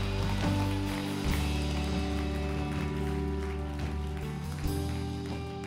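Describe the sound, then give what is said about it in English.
A church audience claps to praise Jesus in a dense, steady wash of applause that runs for several seconds, with sustained low tones humming underneath and no voices standing out. “Come on. Let's clap and not praise Joseph, but praise your Jesus.”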